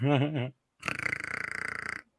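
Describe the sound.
A short voiced groan, then after a brief pause a long, loud, rattling burp that lasts over a second, close up and alone.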